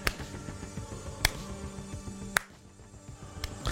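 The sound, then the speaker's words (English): A slow clap: three sharp, crisp claps spaced roughly a second apart, ringing out over a steady low musical background with no voices. “The cliche, but still kind of funny slow clap.”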